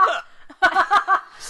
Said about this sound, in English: I'm gonna read these through my hiccups.